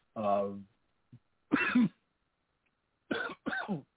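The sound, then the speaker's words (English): A person coughs, starting with a voiced, throaty hack, then after a pause a harsh cough and finally two quick coughs in a row, with silence between and no talking. “I'm thankful to all of you for putting up with this cough tonight.”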